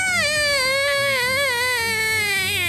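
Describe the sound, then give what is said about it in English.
A human voice imitates a small dragon's cry: one long, high, wavering wail with a quivering pitch that slowly sinks toward the end, heard alone without any talk. “And this little dragon then is going to turn towards where the big one was, but it's not there anymore. And it just goes...”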